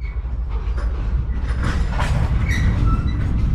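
Trains rumble along rails at a depot with a steady, loud low-end roar, punctuated by metallic clanks and brief high squeals from the wheels, without any voices.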